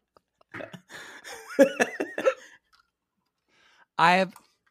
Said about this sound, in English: I have the worst case of hiccups right now